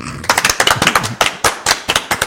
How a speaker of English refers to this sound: You can only clap when I say it.